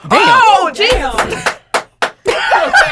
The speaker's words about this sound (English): Clapping in the background.